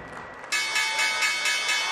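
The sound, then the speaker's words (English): The stock exchange closing bell on Wall Street, a loud electric bell, starts abruptly and rings continuously with a rapid, pulsing clang, cutting in over faint background murmur and filling the rest of the moment. “The closing bell ended a bloodbath on Wall Street.”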